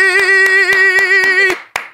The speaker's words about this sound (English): Ladies and gentlemen, big round of applause